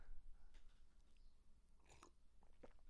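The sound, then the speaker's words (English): Close-up sipping from a drink right at the microphone, a few short wet slurps and mouth noises spaced out over a quiet background, with no talking. “I audibly have to sip into the microphone to keep you guys interested.”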